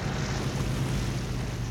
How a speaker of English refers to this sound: The plane comes in to land on the water.